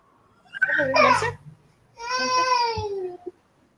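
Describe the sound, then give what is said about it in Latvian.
A baby, being lifted up, babbles briefly, then lets out a longer whiny, fussing wail that drops in pitch. Both sounds are fairly loud, with a short quiet gap between them. “Tā es te pacilāšu ko bērnu.”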